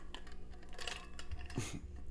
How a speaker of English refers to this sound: Cheers as I take another sip.